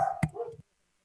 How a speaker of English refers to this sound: Are those your dogs